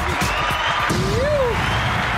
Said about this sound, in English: Crowd loud today. Exactly. Chill out, crowd. Chill out.